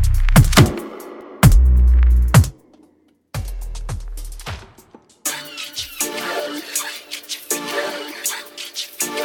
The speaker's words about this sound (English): Yeah, I'm going to leave you with a pretty interesting tune before coming on the Embassy imprint.